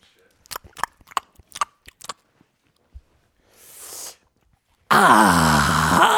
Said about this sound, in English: Is there anything more disrupting than the sound of somebody chewing?